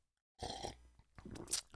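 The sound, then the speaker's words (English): A short, wet slurp of someone sipping tea, then a pause, then a second, louder slurping gulp with a breathy swallow at the end. No talking. “I need to sip this because I've been holding it.”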